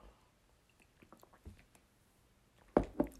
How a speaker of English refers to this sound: I just had a little bit of trouble swallowing some water.